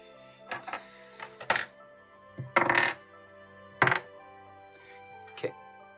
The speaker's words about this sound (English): Let me just actually roll some dice.